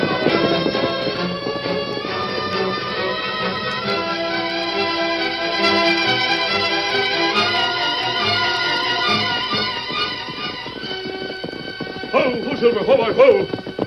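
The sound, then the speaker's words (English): Rapid galloping hoofbeats of a horse being urged on pound steadily beneath a dense, sustained orchestral wash, the rhythm running the full length and swelling louder near the end. “Get up there, horse.”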